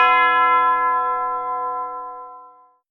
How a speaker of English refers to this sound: As his hands pull away from the metal, a single church bell rings out clear over the cape.